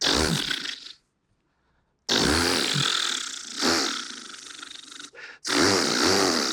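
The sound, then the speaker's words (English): A voice imitates a chainsaw being started and running, making loud, raspy, buzzing bursts: one short burst, a second of silence, then a long revving stretch broken by a brief catch. “But sure enough, he got the chainsaw and he started it.”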